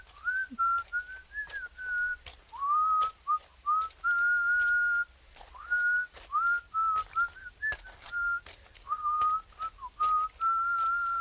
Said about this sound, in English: Must you whistle, Malduit? Pardon, sire. We can trudge through this muddy wood in stoic silence if you wish. Perhaps my whistling is frightening away the Green Chapel, and that is why we have yet to find it.